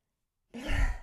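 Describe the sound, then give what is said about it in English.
A single forceful, breathy exhale bursts in after silence, a loud rushing yoga lion's breath with a low, throaty rumble that holds steady for about half a second. “And just let out a quick, just a quick lion's breath, as it's known in yoga.”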